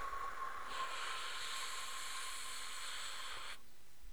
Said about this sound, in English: That's a thing called four-square breathing.